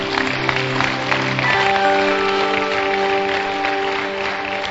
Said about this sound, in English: Clap for Jesus.